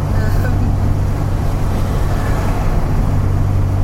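A Morgan three-wheeler car's engine rumbles close by, a loud, steady low drone with constant road noise and no pauses or breaks.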